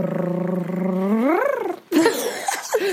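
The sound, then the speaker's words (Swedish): A voice imitates a drumroll with a sustained, throaty rolling trill that sounds like a purring cat. It rises in pitch near the end, then breaks into a short, breathy, noisy burst. “Det där var typ en spinnande katt.”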